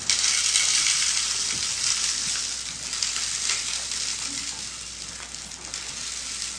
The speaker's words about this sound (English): So then after they'd said that, he pulled out a bunch of smaller rocks, and he started pouring them into the jar. Now, what I need you to do here as I pour these in is just shake them down, okay?